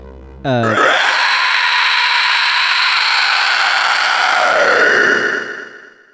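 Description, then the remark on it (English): A harsh, piercing shriek from a skeletal creature with skin so thin her bones protrude erupts suddenly and holds at full volume for about five seconds, raw, before trailing off. No speech around it. “with pure hatred in her eyes, Tildy B. Mitchell shrieks”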